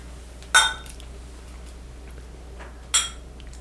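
Two bright clinks of wine glasses in a toast at a wine tasting ring out about two and a half seconds apart, sharp, each with a short shimmering tail over a quiet background hum.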